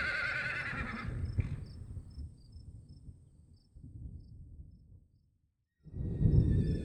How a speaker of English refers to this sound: A moment later, the wagon jerked to an abrupt stop. The horses whinnied and snorted in response to the pull on the reins.